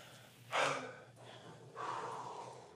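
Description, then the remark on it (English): Heavy breathing of band members catching their breath: a sharp, gasping inhale, a brief pause, then a long rushing exhale, like someone winded, with no talking. “But first of all, we just want to catch our breaths.”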